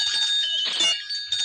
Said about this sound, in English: This is Fantasia. God, did you have to ring the gay little bell in its face while it dies?